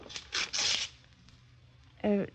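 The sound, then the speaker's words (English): A pen scratches across a piece of paper in several quick strokes as someone writes down a house address, 1220 Biscayne Road; a short burst of scribbling that trails off into quiet before a voice briefly speaks. “Here's the key, and I'll write down the address so you'll be sure to find the house again.”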